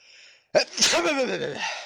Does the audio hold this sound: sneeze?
yes